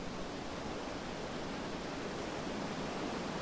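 A steady, unbroken rush of ocean surf and wind, soft but constant, with no distinct wave crashes or swells standing out and no voices.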